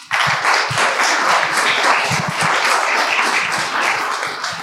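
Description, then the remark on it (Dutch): A live audience applauds steadily, many hands clapping in a dense, continuous wash that stays loud and even for several seconds, as if heard from within the audience. “Heerlijk, hè? Zo live publiek.”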